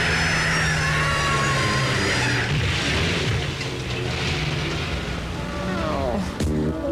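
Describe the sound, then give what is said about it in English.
A heavy garbage truck engine roars loudly, its whining tones bending in pitch as it swerves, then a sudden sharp thud as it hits a pedestrian against the pavement near the end. “Garbage truck just swerved and splattered me against the pavement.”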